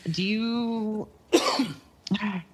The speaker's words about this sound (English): I made it through almost the entire episode without coughing. It was close.